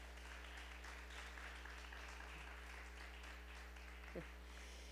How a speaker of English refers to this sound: Give Amber another round of applause. That was beautiful.